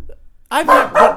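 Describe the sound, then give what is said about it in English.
One of two pet dogs barks loudly, three quick harsh barks in a row after a brief quiet moment. “I'm going to kill all of these dogs.”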